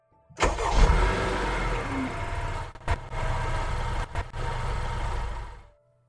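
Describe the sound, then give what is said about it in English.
A car engine, with battery acid poured into its gas tank, rumbles loudly, cuts out briefly twice as it sputters, catches again, then dies and falls silent as the driver sets off to drive to work. No voices are heard. “The next morning, Sandy got behind the wheel of her car and started to drive to work. But it sputtered and stopped.”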